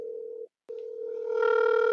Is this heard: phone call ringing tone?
yes